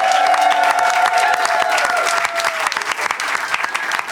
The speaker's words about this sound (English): Please give a big round of applause for our expert, bagpiper, pipe major